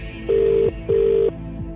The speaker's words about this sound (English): One ring. Two rings. Three rings.